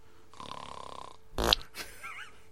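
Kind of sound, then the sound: human body sound, snoring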